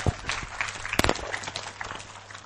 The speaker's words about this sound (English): Thank you. I think that's it. A round of applause just while I put my mic on.